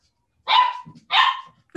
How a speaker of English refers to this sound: Yeah, they're literally, there's one on each side of the baby gate and they're barking at each other.